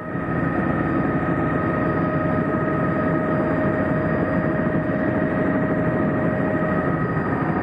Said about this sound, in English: A lot of choppy waves around the helicopter caused by the blades of the helicopter creating small windstorms in the vicinity of the helicopter.